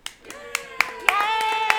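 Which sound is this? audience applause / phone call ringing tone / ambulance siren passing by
audience applause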